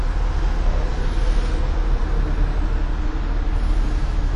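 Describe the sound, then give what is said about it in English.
Steady, loud road noise from inside a car driving over a bridge above a highway in Columbus, Ohio, a continuous low rumble and tire hum with no breaks and no voices. “Hey, we're currently on a bridge that goes over a highway.”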